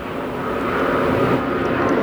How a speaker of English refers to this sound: How about those airplanes? they're pretty frequent, but they're not, you know, I think they're fine.